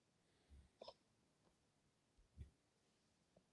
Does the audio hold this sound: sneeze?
yes